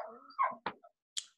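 A dog barks excitedly at a neighbour seen out the window at night, in a quick, uneven burst of yelps and sharp barks, fairly quiet, with no talking over it.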